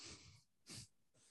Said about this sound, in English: Here's the sniff.